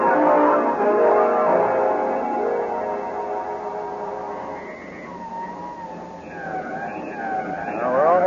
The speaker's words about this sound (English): Quickly, Stevens, a police car and an escort. Hmm? We must be at Pleasant Valley Cemetery in 15 minutes.